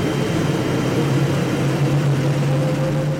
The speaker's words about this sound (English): Then we hear this sound like a jet engine starting up.